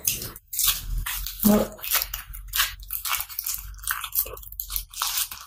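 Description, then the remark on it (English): A paper towel is crumpled and pressed flat, a steady run of dry crinkling and rustling bursts that keep going for several seconds with no talking. “Paper towel. Same way. See? And then flatten it, or don't flatten it.”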